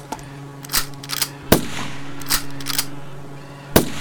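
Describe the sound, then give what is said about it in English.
Several sharp rifle shots, fired at a drone from an open street with fields all around, crack out at uneven intervals, two of them noticeably louder than the rest, over a steady low droning hum that runs underneath the whole time. “I still have the rifle. I should shoot the drone, right?”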